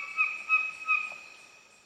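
A songbird sings clear, sustained whistled notes that hold and overlap like soft organ tones, with a few brief swelling accents early on before fading out, moderately quiet and alone.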